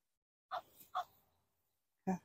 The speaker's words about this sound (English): You know your neighbor that's really weird that has that funky dog bark? That's it. It's not a dog, it's a duck.